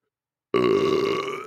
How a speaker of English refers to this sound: Oh, it's just going to burp. This is going to be a nice kombucha burp, too. Hold on.